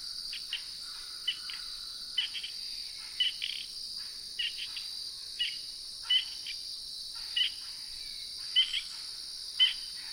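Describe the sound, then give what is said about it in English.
A spring peeper calling in autumn from a shrubby patch by a road gives short, squeaky high peeps at a loose, steady pace, roughly one per second, over a continuous shrill drone of insects. No one speaks. “Those were the squeaky notes of a spring peeper calling in the autumn from a shrubby patch.”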